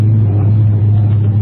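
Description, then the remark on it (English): The engine of a vintage race car, number 31, a two-seater 3098 Vauxhall, roars loudly with a deep, steady drone, holding constant without fading or rising, with no voices. “The other ammo car is still going strong. Number 31 is a 3098 Vauxhall.”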